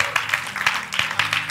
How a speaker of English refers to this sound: Oh, clap your hands and shout glory to God. Oh, I can't feel you in the house.